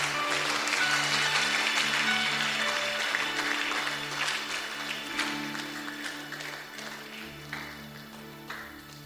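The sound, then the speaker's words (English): A church audience, standing after a sermon, claps in a dense, continuous wash, with sustained low keyboard chords holding underneath; the applause stays strong for several seconds, then gradually thins and softens toward the end. “Oh, are you clapping or you are?”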